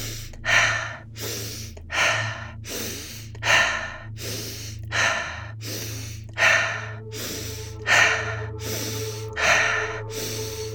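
Fast, steady breathing in through the nose and out through the mouth with no pauses, each sharp inhale running straight into a forceful exhale, repeated rhythmically over a low, constant hum during a one-minute round. Fairly loud, with no talking.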